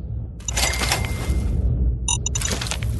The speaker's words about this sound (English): Okay, open a door. It leads upstairs to a fourth level.